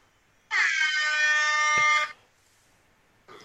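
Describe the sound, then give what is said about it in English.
A single loud air horn blast lasting about a second and a half, a bright, blaring tone that starts abruptly and cuts off, followed by near silence. “There's somebody on Twitter calling for the air horn.”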